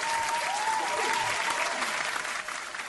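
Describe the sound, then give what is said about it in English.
Sustained applause from a studio audience, dense and steady clapping filling the room for a few seconds, with a faint whistle-like tone drifting through near the start. “Thank you, our studio audience. What a great studio audience we have. Very lively. Yeah, they're cheering you on.”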